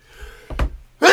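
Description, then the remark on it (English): A single sharp sneeze bursts out, preceded by a quick breathy intake and a dull low thump, with no talking around it. “Bless you.”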